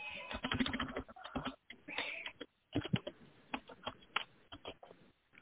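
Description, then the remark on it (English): Rapid keyboard typing, a steady stream of crisp key clicks in irregular bursts with a few brief pauses between runs. “I hate typing in my stupid pen.”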